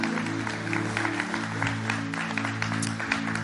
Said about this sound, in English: We're so proud of you, right, church? Would you give me a hand right now?